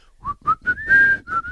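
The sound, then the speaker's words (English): Someone whistles a short, bright tune of about five notes, each rising slightly in pitch, with a longer held note in the middle, fairly loud with no talking. “The best and the worst part is the whistle. That will be stuck in my head forever. I can't whistle very well.”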